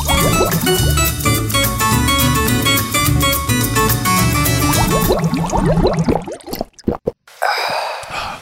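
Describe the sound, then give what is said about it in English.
Coca-Cola Zero pours steadily into a glass in a break room for several seconds, the pitch climbing as it fills, then stops; after a short pause comes a brief breathy gasp. “I need a Coca-Cola Zero and some water.”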